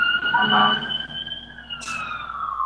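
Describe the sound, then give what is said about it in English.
A siren's steady tones drone through the background, slowly sliding downward in pitch as if an emergency vehicle is passing and moving away, with a brief burst of noise partway through. “Hang on, there's a siren going by.”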